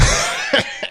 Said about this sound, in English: The sad thing is I have this like cough and it's just making it so much worse.